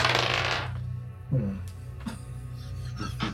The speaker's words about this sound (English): Just gonna keep my mouth shut as I roll a 7.